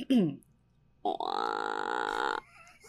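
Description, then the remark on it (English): A person vocally imitates the awkward throat gurgle they would make instead of burping: a short low croak, a brief pause, then a sustained strained, buzzy gargling tone lasting over a second, fairly loud. “But I would make these really awkward gurgling noises instead of burping. Can you imitate one?”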